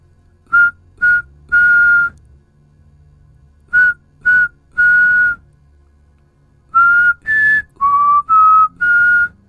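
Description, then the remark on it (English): A person whistles clear notes in rhythmic groups just outside a window: two short notes and a longer one, repeated, then a run of five notes shifting in pitch. The whistling is loud, with no talking. “This time the notes were shorter, closer together, rhythmic even. Each one like a quarter note, whistled one after another, almost as if there was a beat to them.”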